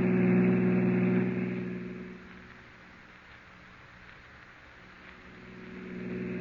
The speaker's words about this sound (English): Oh, officer, can't you go faster? I'm driving as fast as I can, Miss Prentice.